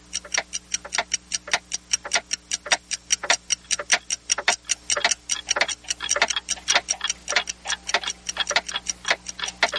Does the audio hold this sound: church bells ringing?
no